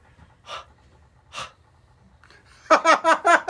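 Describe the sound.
Two short, breathy huffs of air about a second apart, soft, as a woman breathes onto the lenses of her eyeglasses, followed by a louder burst of rhythmic, voiced laughter.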